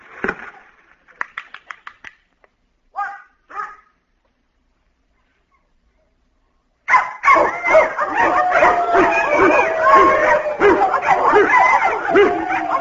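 A few short yips and barks, then after a pause a dog bursts into continuous, frantic, loud barking and whining with no let-up, reacting to a record played at 40,000 cycles for only dogs to hear.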